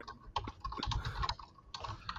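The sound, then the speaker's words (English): Rapid, irregular clatter of knuckles banging on a computer keyboard, dense bursts of plastic key clicks, with a brief pause midway before the clacking resumes. “Just banging your knuckles on your keyboard.”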